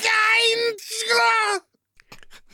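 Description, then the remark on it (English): A person performs a creature's horrible wail: a loud, strained, sustained cry broken by a brief catch, then a few seconds of soft crackling, crunchy noises. “He lets out a horrible wail.”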